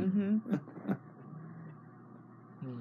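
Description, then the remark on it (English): A pet snoring: a low, buzzy rumble broken by two short snorts, then settling into a quieter, steady breathy drone. “You hear Bentley snoring?”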